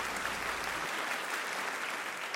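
A round of applause, dense and steady clapping from a group filling the whole clip at an even loudness, with no voices over it.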